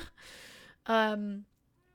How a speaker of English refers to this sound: My cat agrees, apparently. Don't know if you heard her.